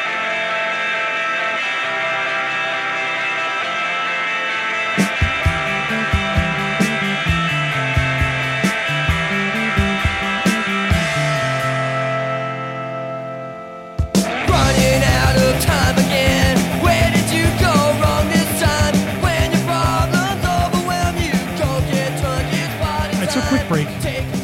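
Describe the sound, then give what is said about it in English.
An instrumental music interlude during a show break, with a steady beat and sustained synth tones; around the midpoint the music fades out and a denser, louder, busier section kicks in and continues to the end. No one speaks. “20 seconds with the music interlude.”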